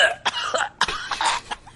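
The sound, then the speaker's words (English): A voice imitates a harsh, wheezy rheumatic cough, several rough hacking bursts in quick succession, fairly loud with raspy, breathy texture and no speech. “You know, I'm a cyborg with a rheumatic cough.”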